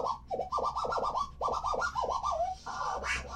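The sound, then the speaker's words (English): A record being scratched back and forth under a turntable needle: a quick run of swooping strokes that slide up and down in pitch, ending in a longer, smeared rasp. Loud, with no talking. “So if you move it back and forth, if you move it faster, the noise is higher pitch.”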